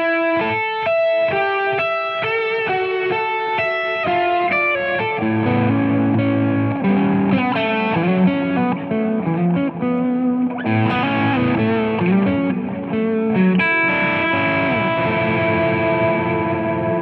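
An electric guitar plays a jazz-minded chord melody version of a record, with sustained stacked chords and single-note lines, washed in distortion and echo-like effects. It stays steady and fairly loud throughout, with no voices.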